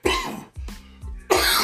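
A person coughs after taking a first pull of a smoke, in a series of harsh, raspy bursts: a strong hack, a few shorter throaty coughs with wheezy inhales, then another forceful cough.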